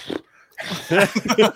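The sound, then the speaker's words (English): A person imitates the horse-like huffing of the character Dewey in a film's awkward sex scene: a short breathy burst, a brief pause, then a louder run of rough, snorting puffs with a grunting, pulsing rhythm. “He stomps like a rhino. He's like huffing like a horse, like.”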